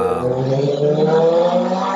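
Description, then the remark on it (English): A car engine revs loudly and steadily, a dense harmonic growl holding a high pitch for a couple of seconds with no voices over it; it is The Rock's (Dwayne Johnson's) Fast and Furious car. “And there it goes. The Rock in his Fast and Furious car.”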